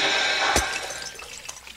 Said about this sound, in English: A boy walking on the street above the sewer tripped. The glass ball he was carrying broke.